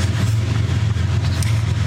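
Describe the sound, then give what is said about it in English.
A loud, steady rumble of a long train, said to take about six minutes to pass, rolling past at a railway crossing where a runner turns around. It has a deep droning hum and a broad rushing noise that holds constant throughout. No voices are present. “Oh, I'm sorry, we are hitting the train. These trains are so loud.”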